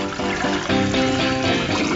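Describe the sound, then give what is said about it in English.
A toilet flushes with a steady, loud rush of water that fills the whole two seconds, swelling slightly partway through, with tonal ringing layered over the gushing. “Flushing rags.”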